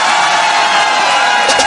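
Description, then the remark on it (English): A large crowd cheers and screams in a loud, unbroken roar of mixed voices, with a few sharper shouts rising near the end. “Four more years of Donald Trump. Let me hear you scream!”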